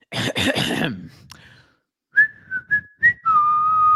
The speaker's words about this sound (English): You know we're back when we're whistling the Bally Sports theme